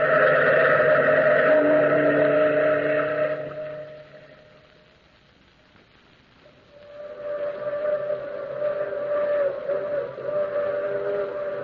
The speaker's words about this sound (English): Listen. That's the long moaning whistle of the through express, wailing through the lonesome night, crying like a lost and anguished soul in the mountains. Listen to it. I've heard that mournful crying for 10 years.